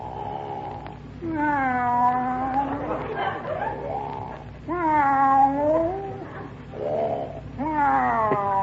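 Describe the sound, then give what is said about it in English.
A cat yowls three times in long, wavering, drawn-out cries, each rising and bending in pitch, separated by brief pauses, loud over a low steady hum. “Taking a cat nap.”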